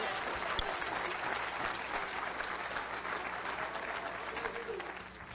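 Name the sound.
audience clapping in praise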